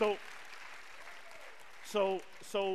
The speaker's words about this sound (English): Lord have mercy. Somebody clap for that. You need to clap for that.